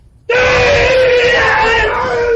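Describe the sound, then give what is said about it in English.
A loud martial-arts battle scream from a karate fighter during sparring bursts in suddenly and holds as one long, strained, high-pitched yell, intense, lasting about two seconds. “Now, the screaming, this is to increase power, to try to frighten your opponent and give added strength to your techniques.”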